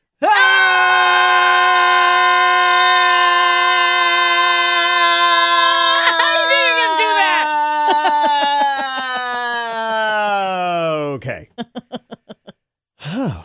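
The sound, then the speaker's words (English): Several people scream together inside a car with the windows down, in one long, loud, sustained cry lasting about eleven seconds, the pitch sagging at the end, followed by a few short breathless gasps. “Let's just all scream.”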